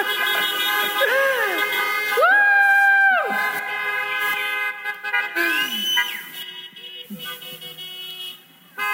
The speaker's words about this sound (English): I want to give a shout out, but instead we're going to give a honk out. Let's hear the horns for Mom.